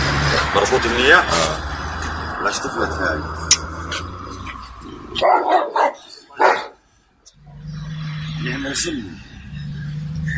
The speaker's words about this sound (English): This is going to be a dog barking at some guy not speaking English.